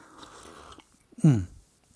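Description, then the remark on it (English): A short, loud sip and swallow of coffee, a brief slurping rush that slides into a low gulping tone, after quiet faint rustling. No one speaks. “I just need a quick sip of coffee.”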